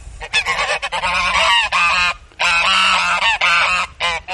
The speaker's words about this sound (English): Oh, look at the lovely geese.